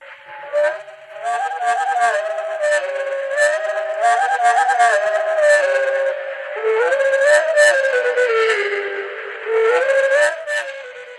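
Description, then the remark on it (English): Slowed-down birdsong, heard as long, low, wavering whistled tones that swoop and glide in pitch, with layered harmonics and occasional buzzy, rattling bursts, continuing without pause for several seconds. “Okay, that's what you would hear if you were with the bird. But when you slow it down, listen again now.”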